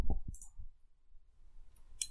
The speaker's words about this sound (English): Yeah, it's a fucking chair, man. You can hear that fucking chair, man.